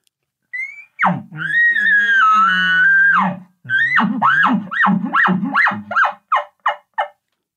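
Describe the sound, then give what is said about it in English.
An imitated bull elk bugle, made as an aggressive call followed by a chuckling sequence while a bull is moving toward the caller: a rising whistle swells into a long, loud, raspy high-pitched squeal, then breaks into about eight rhythmic, grunting chuckles that fade and space out toward the end. “My first aggressive bugle is going to be as he's clearly moving in the direction I want. I'll start the chuckling sequence.”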